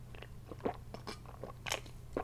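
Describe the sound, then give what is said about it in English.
Wet mouth sounds of someone sipping a drink: several short slurping and swallowing bursts at an irregular pace, over a low, steady background hum, with no talking. “Now pause as I take a little sip of the bevy.”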